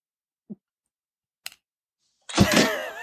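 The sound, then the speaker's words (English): A couple of faint clicks, then a loud, wavering squeak from a bedroom door swinging for nearly a second, ending in a sharp bang as it slams shut. No one speaks. “Sorry, my bedroom door, it make like this weird ass squeak noise.”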